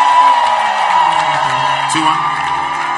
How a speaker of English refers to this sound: Then make some noise. Clap your hands as we welcome to the pulpit Bishop Richard I am.